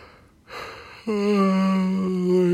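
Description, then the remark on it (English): A single yawn: a breathy inhale that opens into a long, drawn-out voiced groan, loud and alone with no talking. “I'm just gonna revel in these yawns now.”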